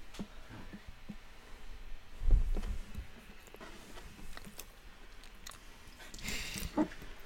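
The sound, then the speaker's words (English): Quiet mouth noises of someone chewing food, with soft wet clicks and smacks scattered irregularly, a louder thump near the middle, and a brief hiss toward the end; no talking. “Sorry, I'm chewing, dude.”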